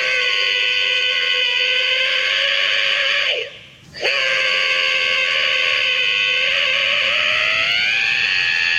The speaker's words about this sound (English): … screaming alarm clock that when you press the button or when you wake up in the morning, it screams you awake.